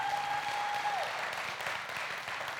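A crowd applauds the Encircle Life crew on a Sunday morning, a dense wash of many hands clapping at even loudness throughout, with a sustained tone briefly audible at the start before fading out.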